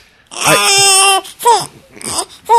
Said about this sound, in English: Oh, I'm sitting in Stork's chair, so of course the baby noise has to happen.